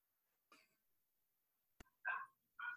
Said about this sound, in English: Aw, dang it. Nah, keep going. Keep going. I like when the dog talks. Shout out to the dog. He probably's happy about y'all meeting.